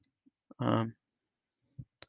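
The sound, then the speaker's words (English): A three-ring binder holding paper clicks several times, sharp, in irregular snaps spread across a couple of seconds, with a short voiced sound breaking in between the clicks. “I think there's something wrong with the binder, but it's a three-ring binder.”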